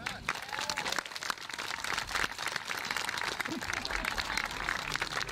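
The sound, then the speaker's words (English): An audience applauds a man's baptism steadily for several seconds, a dense, even patter of many hands clapping at once, with faint voices and scattered calls mixed in beneath the sound. “Can we join in that applause?”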